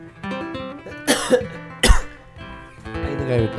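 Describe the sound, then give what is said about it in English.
Two loud coughs right into the microphone, the second sharper and heavier, with a low hum of background music or tones continuing around them. “I think I shouldn't cough in the microphone.”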